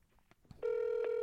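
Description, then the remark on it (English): A steady electronic telephone ringing tone begins abruptly after a few faint clicks, holding a loud, constant mid-pitched hum with harmonics, like a call connecting and ringing out. “Who are you calling?”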